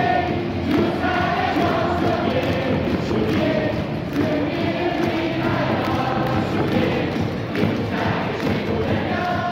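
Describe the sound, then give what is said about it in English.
A dense, steady roar of a large crowd of fans at a KBO baseball game in a stadium, at full volume, with overlapping voices, rhythmic chanting and thumping beats continuing loudly for the whole stretch. “I think, you know, people watching on ESPN right now in the U.S., they're really missing out on the fan atmosphere in the KBO.”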